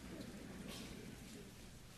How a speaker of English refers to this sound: Ephesians chapter 2. There's nothing better than the sound of rustling pages to a preacher.